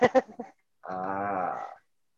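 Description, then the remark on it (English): A few quick vocal syllables, then a sustained, slightly wavering voiced tone of about a second, like someone vocally imitating a censorship beep for a radio edit, steady before it cuts off. “Did you not hear my beep?”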